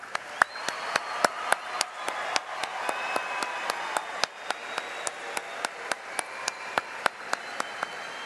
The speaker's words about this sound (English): These representatives from these companies are here tonight, and I invite you to join me with a hearty round of applause to honor our industry partners.